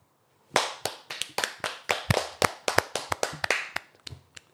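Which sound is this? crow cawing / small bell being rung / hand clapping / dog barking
hand clapping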